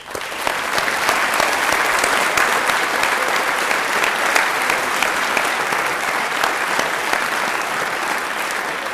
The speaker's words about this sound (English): Give one more round of applause to all of the students.